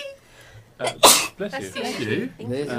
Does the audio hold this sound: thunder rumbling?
no